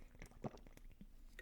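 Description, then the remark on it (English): A person drinks water: a few wet gulps and swallows with small liquid clicks, quiet and irregular, with no talking. “That's some high quality H2O.”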